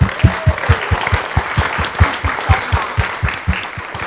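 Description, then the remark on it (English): A round of applause from a group, dense steady clapping with sharp rhythmic hand claps lasting several seconds at a fairly loud level, with no speech over it. “Let's give a round of applause, babe.”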